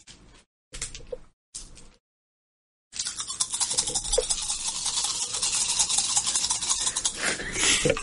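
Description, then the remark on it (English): Dice rattle and clatter: two short bursts of shaking, a brief pause, then several seconds of steady, dense rolling noise, with no voices. The dice are rolled for intuition perception checks; the result is read as three ones and a six. “Competitive dice rolling.”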